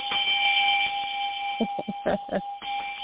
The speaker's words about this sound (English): I understand that you haven't called in for a while, so I usually only ring the bell for first-time callers, but here you go.